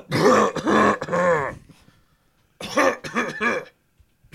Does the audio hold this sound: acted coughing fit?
yes